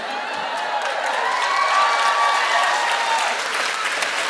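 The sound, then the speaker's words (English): Sustained audience applause, a dense steady wash of many hands clapping at even loudness throughout, with a faint whistle-like tone riding briefly in the middle and no one speaking. “It's not when you'd need a content warning, but I went for it and people applauded.”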